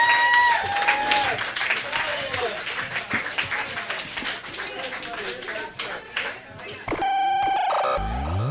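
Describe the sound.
An audience at the You Look Like comedy show applauds steadily for about seven seconds, dense clapping mixed with cheering voices and a few whistles, then a bright electronic chime and rising tonal sweep cut in as the applause fades.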